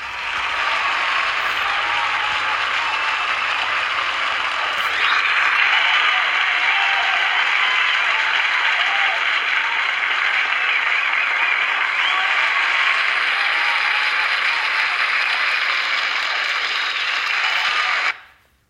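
Applause sound effect: a dense, steady wash of many hands clapping that holds at an even, loud level for about eighteen seconds before cutting off abruptly.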